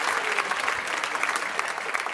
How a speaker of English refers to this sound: Y'all should clap your hands. That's wonderful. Talented. Wonderful.